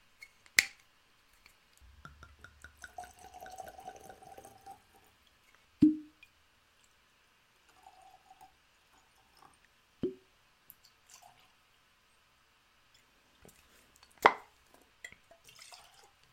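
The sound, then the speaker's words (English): Whiskey is poured into glasses for a tasting in short stretches of gurgling, trickling liquid, broken up by several sharp clinks and taps of glass being set down. It is fairly quiet, with no talking. “So let's get these poured and jump right in.”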